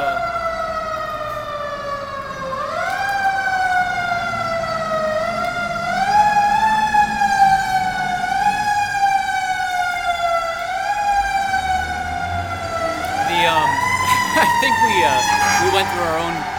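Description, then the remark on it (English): A fire truck siren wails loudly in Worcester, its rising and falling tone sweeping steadily for the whole stretch, with a low rumble of traffic underneath. “Like, there's a fire truck coming right there.”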